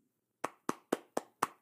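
Five crisp, distinct hand claps in a steady, even rhythm, close and fairly loud, following a brief quiet moment, with no voices.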